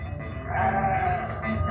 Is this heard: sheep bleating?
yes